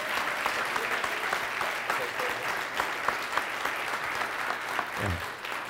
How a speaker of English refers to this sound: Give God a hand clap. You can do better than that.